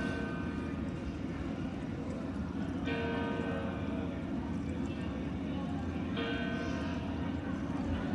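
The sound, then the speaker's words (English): Bells ring out in slow, heavy strikes about three seconds apart, each leaving a shimmering, sustained tone that hangs over a constant low rumble of background noise, heard from the rooftop of a rented apartment. “I'm just going to leave you with the bells for a minute, I think.”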